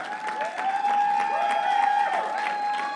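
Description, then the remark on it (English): An audience applauds steadily for about three seconds, a dense patter of many clapping hands, with a sustained keyboard tone holding underneath, clapping on Mother's Day for a woman who led them in worship. “Let's give her a clap.”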